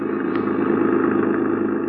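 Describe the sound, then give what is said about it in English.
A steady car engine hums and rumbles at an even pitch while driving through a harbor district, holding a constant loudness throughout with no voices or other distinct sounds. “We were shortcutting through the harbor district when I began to realize that the same car had been behind us ever since we'd left Maria's.”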